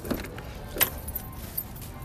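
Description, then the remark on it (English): Outdoor parking lot ambience with a low, steady background hum, a car, and a couple of brief metallic clinks like jangling keys. No one speaks. “We're actually at a parking lot.”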